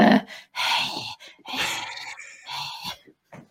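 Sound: imitated heavy breathing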